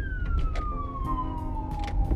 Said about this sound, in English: Let me let this truck go by real quick.